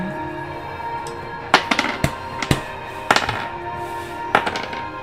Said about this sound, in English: Stop rolling those dice.